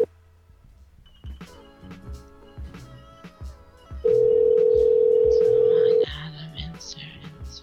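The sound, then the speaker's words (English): A phone call being placed to a staff sergeant: after some faint clicks and background clatter, a loud, steady ring tone sounds for about two seconds, then cuts off. “by the way, if he answers the phone.”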